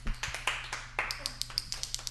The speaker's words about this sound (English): Very good. Well done. Round of applause, people.